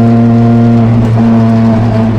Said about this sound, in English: I've been up the Goodwood Hill climb before, but in a car that's nowhere near as quick or as extreme as this Ferrari FXX.